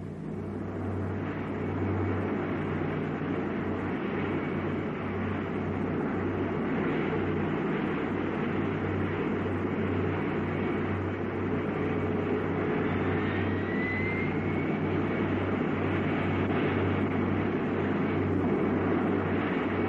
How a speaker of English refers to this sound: Again, you'll hear the roar of our rockets as we drop below the speed of sound.